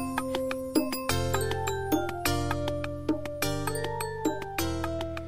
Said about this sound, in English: It's time for some jingle bells.